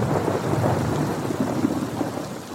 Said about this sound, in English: And we, you know, laughed at a thunderstorm.